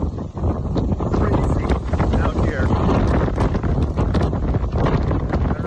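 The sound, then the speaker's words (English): Strong wind buffets a microphone outdoors on a driveway, a loud, continuous low roar and rumble with gusty surges throughout, nearly drowning out a faint voice underneath. “Hey, it's very windy.”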